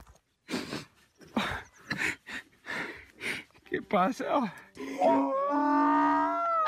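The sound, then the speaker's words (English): A man talks excitedly, then a donkey brays: a wheezing rising call followed by a long, loud, strained honk that fills the last couple of seconds. “instinctively, if you know the show at all, you should be thinking about the man who was reunited with his donkey from a while of ago.”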